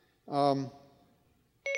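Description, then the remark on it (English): A phone's Siri voice assistant being turned on: a brief bright tonal chime, then after a quiet gap a steady electronic beep that runs to the end, fairly loud. “Let me turn her on here. My phone is actually on.”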